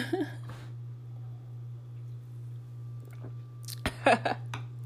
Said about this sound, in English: So, time for another sip.